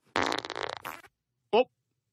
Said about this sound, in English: Here's something new. How about I don't pretend to be asleep when I fart on your leg?